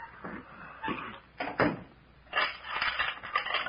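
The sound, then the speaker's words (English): A wooden door is pushed closed with a solid thump, surrounded by clattering and knocking from handling it, followed by more rattling and shuffling. “Come on back in and shut the door.”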